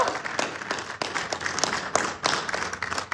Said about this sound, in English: Okay, how many people would like to see, between the two, movie or TV show, and let's say live action, for this hypothetical question, Radiant Black live action movie. Can we hear some applause? Woo!